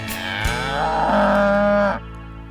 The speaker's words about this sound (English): Hey, there's a cow.